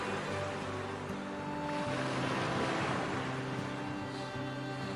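Ocean waves crash and splash in a steady, rushing wash of surf that swells louder midway, with a soft sustained musical tone running underneath and no voices.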